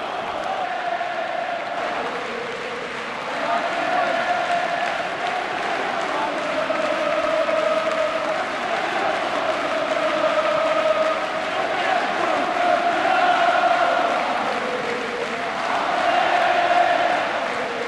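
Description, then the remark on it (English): A huge football stadium crowd roars steadily while shrill whistling at the players rises and falls across it, swelling at times into sustained high-pitched jeering over the dense, loud din, during a heated match between two rival clubs with five red cards. “you can hear the whistles now, the sporting players.”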